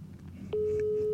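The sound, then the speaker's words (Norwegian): A steady electronic ringback tone of an outgoing phone call starts abruptly partway through and holds at one pitch, heard through a handset held up to the microphone, with a low background hum beneath. “Selvfølgelig har jeg det, nå skal jeg ringe han.”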